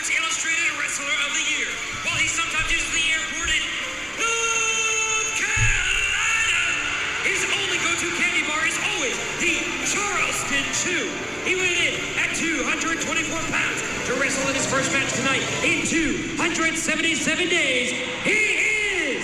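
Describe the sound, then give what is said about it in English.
A loud wrestling arena crowd cheers for wrestler Kenny in his first match in 277 days, in a steady, dense roar, with shouts, yells and whoops rising out of the din throughout, never dropping away. “That crowd is loud.”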